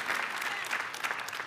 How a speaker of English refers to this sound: Come on, somebody clap your hands for that.